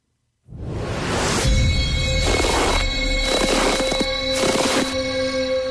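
The third and final set of footsteps played for a footstep-counting quiz: several heavy, irregular thudding steps over a loud, steady noisy background with a faint constant hum. No one speaks.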